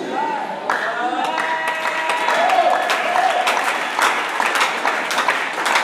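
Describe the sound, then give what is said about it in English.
A crowd claps steadily throughout, a dense, continuous patter of many hands, with voices and cheering mixed in. “The way you are clapping, I see you are not in the house.”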